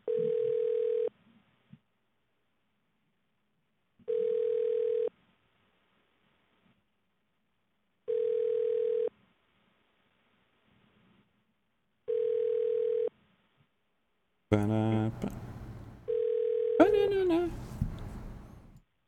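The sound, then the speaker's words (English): A telephone ringback tone repeats five times while a call to the Leanwood Motel is transferred to a guest room, each steady one-second buzz separated by about three seconds of silence; during the last ring, a voice and line noise cut in over it. “Hello, and thank you for calling Leanwood Motel. You are being transferred to a guest.”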